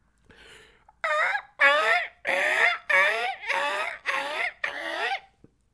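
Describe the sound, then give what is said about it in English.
A person imitates a seagull, letting out about seven loud, squawking cries in a quick steady series, each with a bending, wavering pitch, after a faint breathy lead-in. “I can do a seagull impersonation.”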